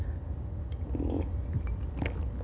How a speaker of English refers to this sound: I'm really going to have to take a sip. This sip is brought to you today by Nine Banded. It is a wheated bourbon out of Austin, Texas. It's quite delicious. I would encourage you to take a sip on the rocks.